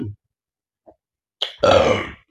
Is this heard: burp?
yes